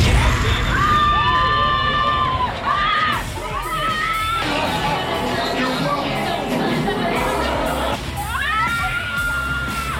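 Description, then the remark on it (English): A crowd of riders on the Guardians of the Galaxy Mission: Breakout attraction shrieks loudly, sustained high screams rising and falling in waves over a constant low mechanical rumble, with excited yells and whoops mixed in. “Okay, I think that I've stopped, like, screaming for the moment.”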